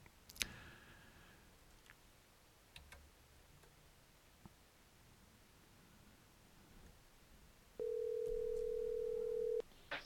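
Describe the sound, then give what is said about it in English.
A telephone call being placed to a guest: scattered clicks and taps of dialing over quiet line hiss, then a loud, steady ringing tone that holds for about two seconds before cutting off. “And she's expecting a phone number from phone call from me, so let's go here.”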